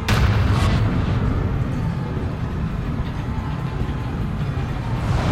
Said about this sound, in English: And then that explosion rings again.